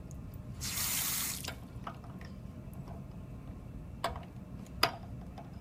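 A tap gushes briefly for about a second, a hissing splash, then cuts off, leaving quiet background broken by a few sharp clicks and drips.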